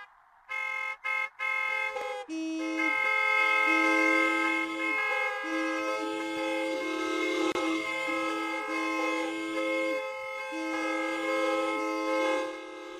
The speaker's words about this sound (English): All right, I'm in between the Spectrum and the Vet right here at the sports complexes. We're ready to go. All the cars are here ready to go, all lined up to honk for Herschel. I'm going to give him a count of 3, 2, 1, go!